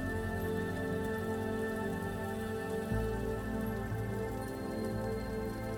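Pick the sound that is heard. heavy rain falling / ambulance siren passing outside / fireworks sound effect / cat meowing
heavy rain falling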